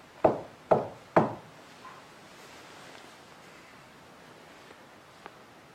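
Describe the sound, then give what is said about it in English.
Three sharp knocks on a solid surface, evenly spaced in quick succession, fairly loud, followed by quiet room tone with a faint tap near the end. “Can you knock three times for us like this?”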